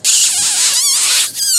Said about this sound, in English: That'll bring him in too. I like those little hand squeakers.